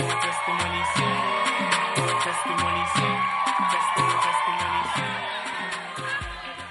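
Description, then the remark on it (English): A church audience claps steadily in a roughly even rhythm as a choir member is welcomed to share a testimony, the sharp hand claps sitting over loud music with a moving bass line. Some crowd noise comes through, but no one speaks. “Clap. Keep clapping.”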